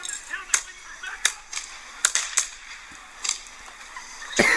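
gunfire

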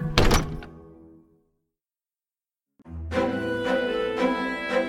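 door being opened

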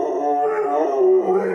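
dog howling and yipping

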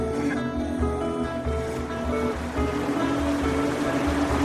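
river water flowing

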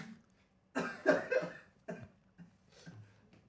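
sneeze

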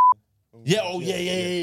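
censorship bleep tone

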